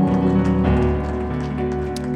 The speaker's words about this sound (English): Now clap your hands one more time today as you're seated.